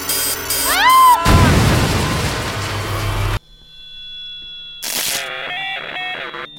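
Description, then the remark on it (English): Electronic robot beeps and bops: quick pitch-bending chirps, then a loud noisy crashing burst, followed by a steady hum and a run of warbling, stepped bleeps. No one talks. “Bad robot sounds.”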